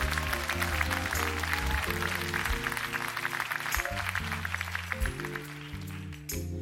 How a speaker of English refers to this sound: All right. A little more harder you clapped in that church. They came to visit.